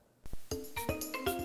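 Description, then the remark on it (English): A brief snippet of music from an upcoming album, barely a second and a half, with bright ringing tones over a few sharp percussive hits, fairly loud, with no voices. “That was a sample. That was from Donkey Kong Country. Nope. Okay. It's from an upcoming … album.”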